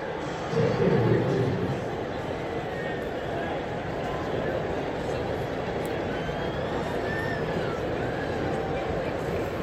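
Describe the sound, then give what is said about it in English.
A baseball stadium crowd at CHS, which holds about 8,000 to 9,000, murmurs in a steady, dense wash of overlapping voices as the Saints play Milwaukee, with a brief louder swell early on before settling into a constant hubbub. “Again, crowd filling in here. Real nice crowd.”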